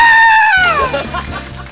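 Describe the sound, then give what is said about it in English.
A single loud, high-pitched scream, held briefly and then sliding downward in pitch, almost bleat-like, before trailing off into low background noise. “I just screamed.”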